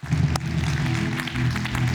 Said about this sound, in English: So next up, we have a very, very important part of what's now our tradition, our second annual election for podcast president. You should definitely cheer for that.